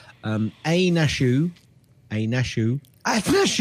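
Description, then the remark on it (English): A loud sneeze with a voiced wind-up, followed by more sneezy, throaty bursts in short groups with brief pauses between them. “Bless you.”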